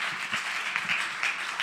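Steady applause from a crowd, a dense wash of many hands clapping at once, sustained and fairly loud for a short stretch with no one speaking over it.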